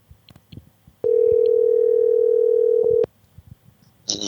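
A phone call being placed: a few soft clicks, then a loud, steady electronic ringing tone holding one pitch for about two seconds before cutting off, followed by faint rustling.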